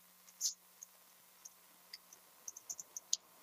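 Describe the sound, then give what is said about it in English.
Quiet, crisp computer keyboard clicks tap out an irregular rhythm, a lone keystroke early on, then a quickening cluster of taps toward the end, with no voices over a faint steady hum; someone works the keyboard using hotkeys in place of a mouse. “If you give me just a moment as I work my keyboard.”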